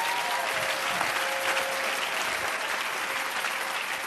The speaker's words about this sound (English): If you will clap for Jesus, you will have mercy on you.